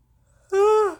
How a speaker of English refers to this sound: I'm sorry, I'm yawning.